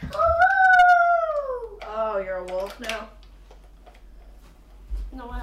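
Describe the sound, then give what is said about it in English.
A 5-year-old boy in Rhode Island lets out a long, high, wavering howl, imitating a werewolf, then trails into shorter voiced yelps before a quiet pause and a brief final vocal sound, all fairly loud. “Oh, you're a wolf now? No, I'm a werewolf.”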